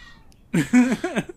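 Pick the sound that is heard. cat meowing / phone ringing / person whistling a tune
cat meowing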